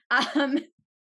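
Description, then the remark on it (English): A quick, voiced throat clearing in two short bursts, like an 'ahem', lasting just over half a second, fairly loud and then silence. “What sound or noise do you hate, aside from all the people that are going to write in and be like, why are you always clearing your throat?”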